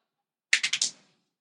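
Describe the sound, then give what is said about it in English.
Dice rolled for a perception check clatter briefly across a hard tabletop, a quick run of four bright, sharp clacks that tumble and settle within half a second. Fairly loud, with no voices. “Roll better if you're going to roll across the table.”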